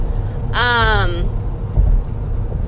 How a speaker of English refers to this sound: There we go. I yawned.